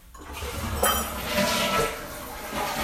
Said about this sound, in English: apologize for that toilet flush